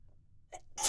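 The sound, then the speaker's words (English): A single sneeze: a short voiced intake of breath, then a sudden loud, hissy burst of air that ends the moment abruptly. No one talks. “I had a whack day, but, sorry, gonna sneeze.”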